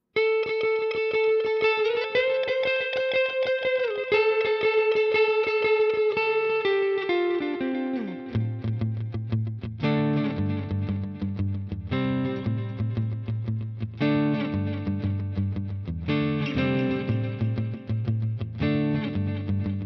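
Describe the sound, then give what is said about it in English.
An electric guitar plays sustained, slightly overdriven notes through a Boss DD3T digital delay pedal, sliding from high held tones down to a low riff, with repeats trailing each note over about twenty seconds and no talking. “replaced by the DD3, and later the DD3T, which is the modern production unit that I've got here today”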